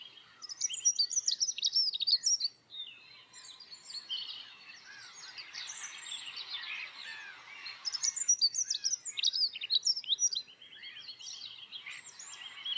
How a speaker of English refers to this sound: But probably because most of you did not enjoy hearing the raven sounds, I'm going to play a few seconds of the pleasant bird sounds again, just to kind of reset your mind a little bit, just in case.